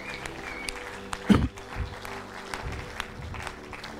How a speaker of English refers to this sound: Come on, let's give our friends a round of applause.